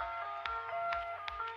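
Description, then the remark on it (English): A moody, sad-sounding club track begins: sustained synth chords hold steady while punchy beats land at an even, quick pulse, fairly loud, with no voices. “Fuck Jersey, but they're making like club music, but also it's sad, and you don't know how much this shit makes me happy because I love sad music.”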